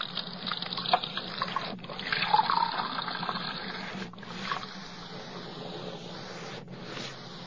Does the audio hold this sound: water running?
yes